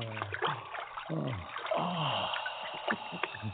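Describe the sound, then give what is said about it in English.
Two people's feet splash and slosh into a basin of water after they take off their sandals, a few soft churning splashes over a few seconds, mixed with low voiced grunts and sighs. “Both of you, off with your sandals. Very well, brother. Feet in the water, please.”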